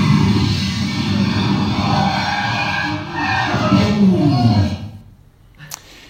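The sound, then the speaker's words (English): Richard Hammond's nearly fatal crash in a Rimac electric supercar on The Grand Tour (Amazon): the car skids loudly and continuously with harsh tyre scrubbing and rumbling for about five seconds, then the noise drops away abruptly, leaving near silence broken by one brief knock. “having his second nearly fatal crash in a $2 million electric car”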